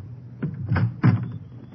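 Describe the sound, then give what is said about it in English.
A door is opened, with a few low clunks and rattles of the latch and frame over a moment or two, moderately loud. “Open up, quick.”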